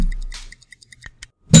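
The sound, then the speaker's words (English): A small bell rings in a quick series of light, metallic dings, then gives way to a louder, harsher clatter at the very end. No one speaks. “I went immediately reaching for the bell.”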